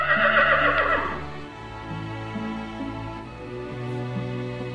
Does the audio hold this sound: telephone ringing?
no